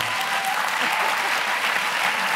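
An audience applauds the speaker, a 67-year-old actor, for acknowledging her age, clapping steadily, a dense, even wash of many hands at a fairly loud level that holds without breaks for a couple of seconds.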